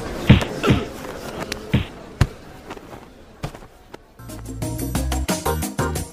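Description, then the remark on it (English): Punches land in a fight between men over someone cutting into a long queue: four or five heavy thuds at irregular intervals, followed by a busier stretch of clattering, tonal sound with no talking. “Whoa, I think there's punching.”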